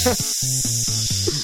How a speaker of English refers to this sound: Hot sizzling. Yep. Got a sizzle sound. We have a what? I was like throwing a sizzle sound in there.